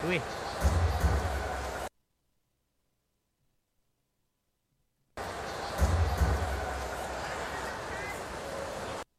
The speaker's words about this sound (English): That's the actual trash can that's being banged in the dugout to let the hitter know off speed's coming.